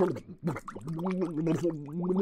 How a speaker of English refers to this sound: Look, there. It is a man drowning. Somebody should help him.